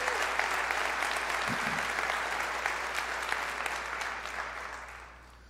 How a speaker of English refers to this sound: Can we give everybody just a big hand clap? Come on.